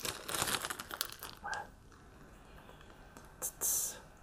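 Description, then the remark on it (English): A trading card pack is torn open with crinkly, crackling foil sounds in a busy burst, then a couple of short, sharp rips of thin wrapper, all fairly quiet with no talking. “Let's crack this open. Card 33.”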